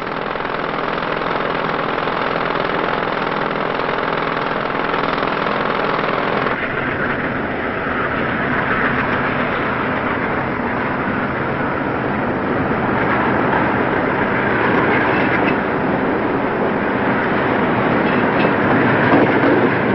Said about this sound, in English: Trains going by now and airplanes overhead, and this is a supposedly quiet residential area in Atlanta, but it's not any quieter than maybe downtown Atlanta, or maybe around 10 decibels quieter